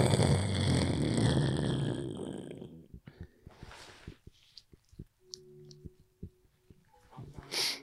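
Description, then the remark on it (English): A voice imitates heavy snoring with one long, loud, rattling snort, followed by scattered quiet clicks and brief faint tones. “Apparently, I snore mad. Fuck with you, go. Yeah, like heavy, like.”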